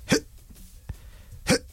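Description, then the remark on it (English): A voice imitates two short, breathy exertion grunts, like someone lifting a little bar with tiny weights at the gym, with a brief pause and a faint click between them. Each grunt is sharp, loud and clipped. “there are grunts and there are gym noises and there are look at me gym noises”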